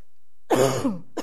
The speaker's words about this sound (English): I'm going to cough.